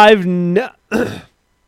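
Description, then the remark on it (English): A person clears their throat: a steady voiced hum, a short pause, then a rough, raspy burst of breath. Both parts are fairly loud, with no other talk. “Never in my Jesus Christ, I can't clear my throat.”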